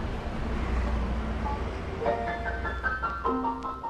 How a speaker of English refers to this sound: Okay, it's back out into some heavy traffic and on to our last destination.